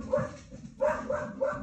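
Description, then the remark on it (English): A dog barks repeatedly in the background, several sharp, moderately loud barks in quick succession with brief pauses between them. “We got a dog barking in the background.”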